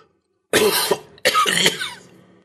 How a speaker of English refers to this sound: From the window, Megan looked back at the obelisk, wincing at how painful the last cough had sounded. It occurred to her how cramped it must be for him in there, trapped in the dark with no fresh air.